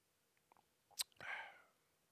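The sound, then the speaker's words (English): A quick sip of a beverage from a cup: a soft click, then a brief airy slurp lasting about half a second, fairly quiet, with no talking. “as I partake in a sip of this delicious beverage.”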